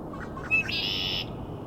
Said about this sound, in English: Also, lots of male red-winged blackbirds, as you can hear.